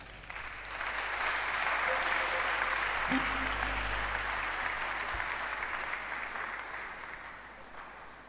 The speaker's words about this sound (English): Let's still be clapping as she's climbing up.